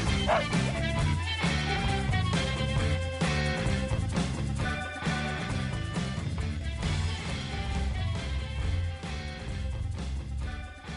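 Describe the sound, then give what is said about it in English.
Butch, the dog of the My Buddy Butch Radio Talk Show, barks repeatedly in short bow-wow bursts, mixed into loud, continuous music that runs through the whole stretch. “the dog behind the man, our executive producer, and everyone's buddy, Butch.”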